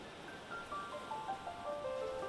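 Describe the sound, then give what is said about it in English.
A steady wash of ocean surf rolls and hisses at moderate volume, with faint, thin tones drifting downward above the noise. No voices are present. “Act 1, Scene 1, The Ocean Where They Met.”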